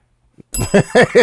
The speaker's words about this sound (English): But why was that a bell ring? What the fuck?